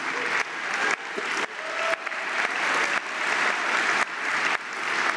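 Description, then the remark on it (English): A crowd claps steadily in dense, sustained applause, loud and continuous with a slightly uneven texture and no voices standing out. “And those of you who didn't applaud, you know, God bless you.”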